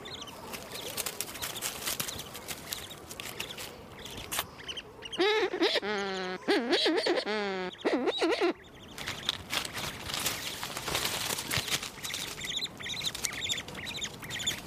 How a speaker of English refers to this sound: And this is another bird just passing by.